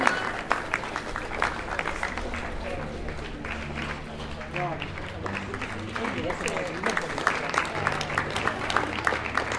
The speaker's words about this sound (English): These people are going to get sore hands from clapping. I wonder if they're going to clap in shifts.